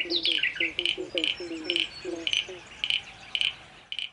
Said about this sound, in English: During this show, you've been listening to Birdsong, recorded by … in their album ….